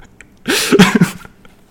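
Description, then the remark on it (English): A person coughs in a short, harsh burst of two or three quick, breathy hacks lasting under a second, loud against an otherwise quiet background with no talking. “You can be here, but if you're gonna be like coughing every 2 seconds, I don't know if this works.”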